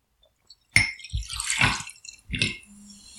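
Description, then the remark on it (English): A sharp glass clink, then Fever-Tree Premium Indian Tonic Water is poured into a glass for a gin and tonic in two splashy, fizzing bursts separated by a short pause. No voices are heard. “Okay, well, I'm going to make mine. I've got the Fevertree Premium Indian Tonic Water tonight.”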